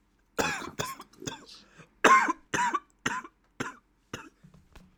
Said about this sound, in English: It's like I had to get that out before I started coughing.